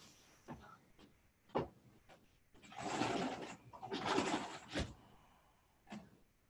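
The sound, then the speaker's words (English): A dog rolling on its back lets out a couple of drawn-out, low, breathy belly groans amid bursts of rustling and a few sharp thumps and clicks, with no one talking. “He has this winding up type of thing that he does where he starts rolling on his back and doing these like belly groans.”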